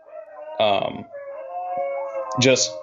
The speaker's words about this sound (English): Dogs like howling in the background right now are just making this just magnificent.